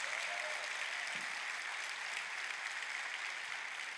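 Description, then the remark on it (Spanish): An audience applauds steadily, a dense, even wash of many hands clapping that holds at the same level throughout without clear breaks or individual claps standing out, answering a preacher's call for applause during a church sermon. “Bendito, que da un aplauso, que mueve, mueve, mueve.”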